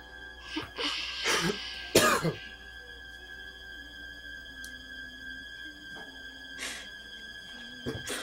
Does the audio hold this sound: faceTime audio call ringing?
no